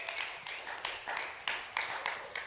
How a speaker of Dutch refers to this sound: geeft hem een geweldige applaus.